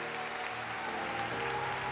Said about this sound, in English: Six, seven, eight, nine. Come on, church, keep clapping.